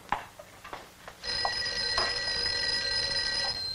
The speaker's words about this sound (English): I think your phone is ringing.